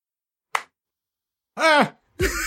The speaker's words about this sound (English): Ah! You're the one that claps. And the claps. I'm the one that claps. Look at me, I'm the clapper now.